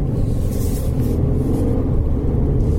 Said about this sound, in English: That's very different. You can hear the gearbox working already.